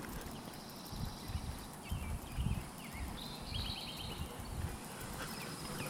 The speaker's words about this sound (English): It's a lovely morning. There's still a lot of birds going at it. That's good.